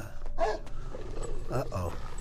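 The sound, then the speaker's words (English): A dog barks aggressively, two harsh, growling barks, the second one longer and rougher, over a low background rumble. “God, that dog.”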